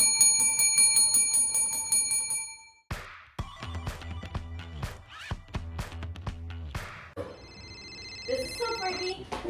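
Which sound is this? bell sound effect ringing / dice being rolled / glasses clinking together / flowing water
bell sound effect ringing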